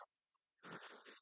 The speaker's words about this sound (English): Excuse me. Bless you.